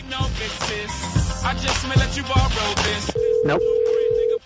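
Busy background music gives way to a single steady electronic ringback tone, the purr of an outgoing phone call to the Downtown Man Shop ringing on the line. It is loud and holds for over a second.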